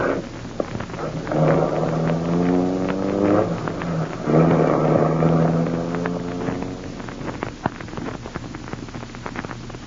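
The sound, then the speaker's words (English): A car engine revs up twice as a man drives off in his car, its pitch climbing as it accelerates away, then the motor fades, leaving scattered light clicks and rumble. “driving off in his car.”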